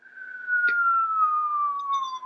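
A falling-bomb whistle from a film scene: one loud, steady tone gliding slowly downward in pitch for over two seconds as the bomb drops, with a brief click early on and faint higher tones near the end.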